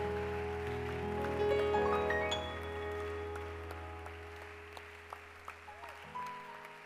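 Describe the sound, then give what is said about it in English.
A crowd in church claps steadily in a dense wash of applause while sustained keyboard or organ chords ring underneath, the clapping thinning toward the end into a few scattered claps. “Hey, please don't stop clapping for that girl.”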